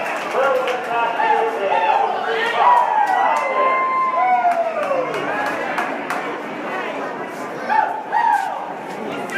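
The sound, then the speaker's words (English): A large racetrack crowd roars and cheers continuously as a horse race starts, a dense wash of many voices with rising shouts and whoops swelling throughout, loud, with a few sharper bursts near the end. “Listen to that crowd.”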